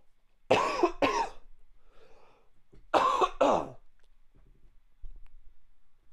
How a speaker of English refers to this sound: Sorry about the coughing.